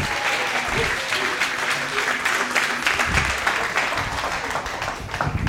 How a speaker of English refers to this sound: didn't they do a great job? I know we just gave them a round of applause, but can we give them another one, please?